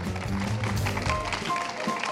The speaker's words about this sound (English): So really, really thank you very much, guys. Can we just get a big round of applause to our panelists, please?